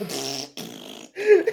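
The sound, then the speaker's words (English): A voice makes a quick run of three blown, sputtering fart noises, each rough and buzzy, separated by brief gaps, the last rising in pitch and ending louder. “like fart sounds over it and like, oh no, look, it's coming out.”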